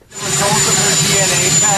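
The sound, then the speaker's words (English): A helicopter the U.S. President is about to board roars loudly and steadily, a dense engine whine filling the whole stretch, with indistinct voices of reporters questioning him faintly mixed beneath it. “Sorry, you have a helicopter roaring in the background.”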